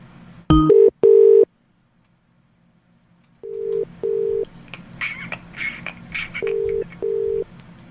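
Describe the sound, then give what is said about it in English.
A phone dials out with a quick beep to return a missed call, then steady ringback tones pulse in pairs, separated by short silences, over faint background noise and clatter. “We missed a phone call there, so I'm just going to call this person back.”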